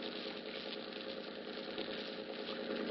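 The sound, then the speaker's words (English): A boat's steady, low engine idles continuously as it pulls into Pier 40, a dense rumbling drone with faint vibration holding at an even level throughout, with no speech. “The name on the boat is the Dolphin. It's pulling into Pier 40 now.”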